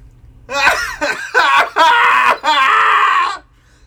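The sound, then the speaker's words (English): Several voices scream together in a cathartic group scream, starting in short broken bursts that sound almost like laughter, then stretching into two long, loud, sustained yells before cutting off. “Let's do a cathartic scream together.”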